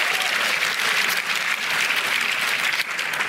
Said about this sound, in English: Somebody give the Lord a hand clap, a shout, a hallelujah, and an amen.